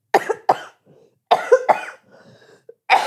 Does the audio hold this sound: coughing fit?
yes